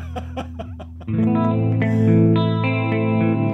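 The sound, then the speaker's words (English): A few quick strummed hits on an electric guitar through a guitar amp give way to a loud, washy reverb tail that swells and keeps ringing steadily, sustaining without any new notes played. “I'm not even playing right now. That's the reverb just kind of rolling.”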